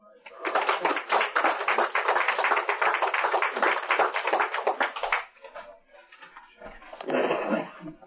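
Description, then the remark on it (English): A crowd applauds steadily for about five seconds as a speaker is introduced, a dense wash of many hands clapping, then it fades to scattered murmurs before a brief second burst of claps near the end. “I'm glad y'all clapped before I spoke.”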